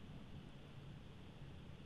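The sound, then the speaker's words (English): A low, rolling rumble of thunder from a storm coming through, mixed with a steady wash of rain-like hiss, holding at an even, fairly quiet level throughout with no voices. “Well, there's a storm coming through.”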